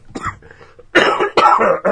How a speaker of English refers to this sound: It's coughing time! Oh, man. When I get laughing hard, I cough with this sinus infection.